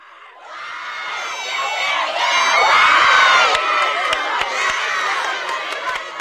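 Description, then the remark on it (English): Two camp teams, white and blue, stand side by side at the waterfront cheering against each other while waiting for the final leg of a relay race: young voices in a loud, sustained roar that swells midway, with high-pitched whoops and a few sharp claps or thumps punctuating the din. “Down at the waterfront, the white and blue team stand side by side with dueling cheering, waiting for the final leg of the relay race.”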